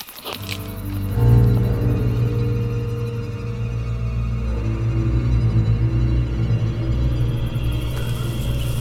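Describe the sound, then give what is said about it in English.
Deep, eerie magical humming of a dark tome responding to a rift in a floodgate: a steady low drone with layered rumbling tones that swells early and holds throughout, with no voices. “The dark tome is starting to hum. Can't you hear it hum?”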